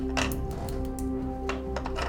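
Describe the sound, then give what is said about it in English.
Several light, sharp clicks and taps scattered over about two seconds as dice clatter across a table, moderately quiet, over a steady low hum with no talking. “I see how the dice fall over there.”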